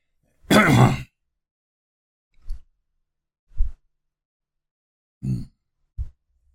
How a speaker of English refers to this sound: I'm going to clear my throat and have a little drink of coffee before I go on.